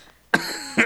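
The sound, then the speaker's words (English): A loud fit of coughing: a harsh burst that drags on raspily, then a second sharp cough right after, as a person coughs out water that went toward the trachea. “I needed to interrupt you to cough out some water that tried to go into my trachea.”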